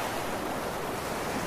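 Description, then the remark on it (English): Steady ocean waves wash and hiss continuously, blended with a soft rush of wind, forming a dense, even roar of surf with no voices present. “The timbre of waves and the wash of the wind all do lap at the seal and the salt of the eyelids.”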